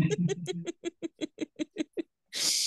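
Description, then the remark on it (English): A female cat named Cakes vocalizes in a quick run of about ten short, evenly spaced chirping calls, followed by a brief burst of rough, hissy noise. “Your cat is here. I heard her.”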